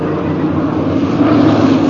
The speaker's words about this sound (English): It's not the balloon, Jones. It's a plane.